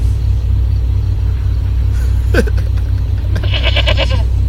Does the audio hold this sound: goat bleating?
yes